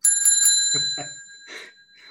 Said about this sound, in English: And that day, that same day, she closed her first sale. So she rang the bell.